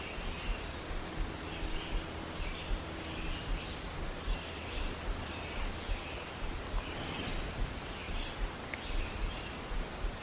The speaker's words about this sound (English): The air cooler, birds singing, chainsaws absent, smoke absent.